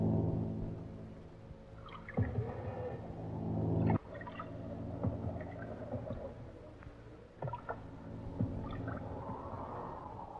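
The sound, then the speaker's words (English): Oars dip and pull through water in slow, uneven strokes as a boat lowered from a ship is rowed alongside the ship Sea Phantom, each stroke with a soft splash and slosh, over a steady low hum and lapping water. “Stop rowing now”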